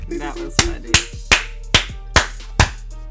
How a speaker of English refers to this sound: That's the commercial clap. We have a commercial clap? So whoever does it knows when to put the commercials when they see it.